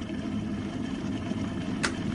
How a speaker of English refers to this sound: Now, while the kettle's boiling